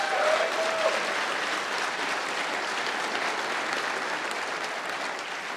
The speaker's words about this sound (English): So I just want to say thank you to everybody who traveled for this, and give yourself a huge round of applause wherever you are.